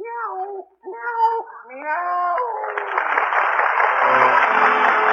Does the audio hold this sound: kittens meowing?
yes